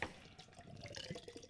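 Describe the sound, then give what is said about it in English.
Nitro beer is surge-poured hard from a can into a glass: a steady, soft gushing of liquid with faint fizzy bubbling and small gurgles, continuous, with no voices. “Because these are nitros, so it can be a little rough with them. Surge pour.”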